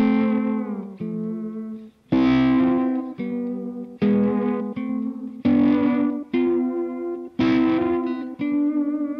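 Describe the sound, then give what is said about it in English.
Sustained two-note chords played through an effects unit, with a slightly distorted, harmonically rich tone. A series of chords changes roughly every second, each one ringing briefly before the next. “I would actually use it as textures with chordal things. So I find like two note chords work the best, just at least for keeping intonation.”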